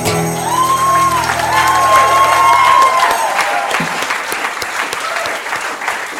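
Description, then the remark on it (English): Loud, sustained audience applause with scattered cheers and whoops, including a couple of rising whistle-like shouts early on, settling into steady dense clapping that continues throughout. “Thanks for clapping.”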